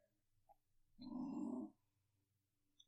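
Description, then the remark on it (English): A dog lets out a short, low half-growl lasting under a second, fairly loud, with a faint low hum in the background and no talking. “You know what those half growls are”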